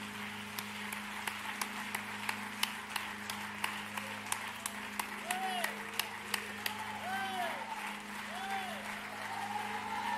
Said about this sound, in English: Could you clap your hands to the Lord one more time?